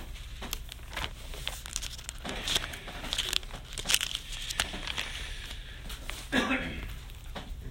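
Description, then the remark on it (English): Thin Bible pages rustle and crinkle as they are flipped to Colossians chapter 1, with a steady series of soft crackling turns and a brief louder swish near the end. “It looks like I need to turn there.”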